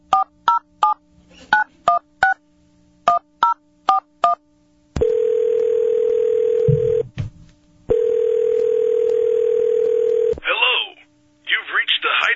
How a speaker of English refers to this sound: All right, bring my phone up so I can dial.